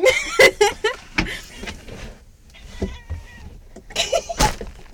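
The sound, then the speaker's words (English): A cat, Kiswa, sneezes several times in quick, sharp bursts inside a box, with soft muffled rustling and faint bumps between the sneezes. “He's just sneezing in a box right in front of me.”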